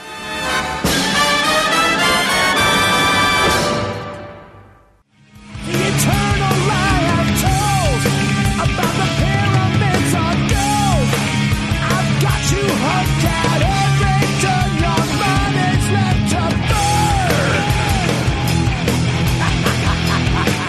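A loud, dense heavy metal track with distorted guitars, pounding drums and wailing high vocals; after a brief fade-out near five seconds, the full band comes crashing back in and drives on.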